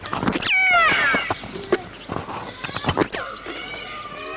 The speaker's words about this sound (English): The second sound, the screeching noise, was peacocks.